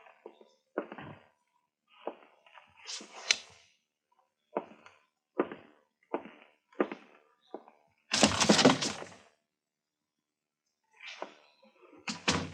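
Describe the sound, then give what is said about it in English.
An unlocked door is pushed open slowly, making a series of short creaks and cracks followed by one longer, louder scraping groan, with no one talking. “It's not locked.”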